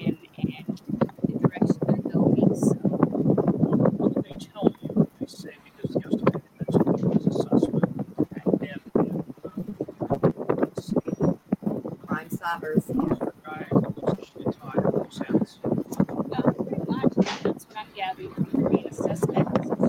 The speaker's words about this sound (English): It gets really windy